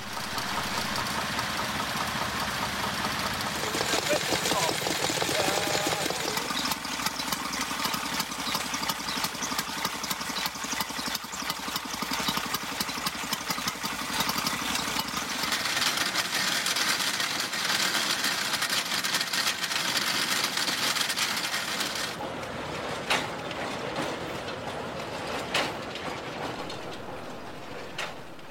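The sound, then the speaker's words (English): Several vintage stationary engines of various sorts, used mainly in agriculture for pumping, grinding and baling, chug and knock steadily together, a dense, continuous mechanical rumble with rhythmic thumping that shifts in texture as different machines come to the fore, with no voices. “That's the sound of various sorts of vintage engines, used mainly in agriculture for pumping, grinding, baling.”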